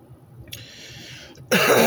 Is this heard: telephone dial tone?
no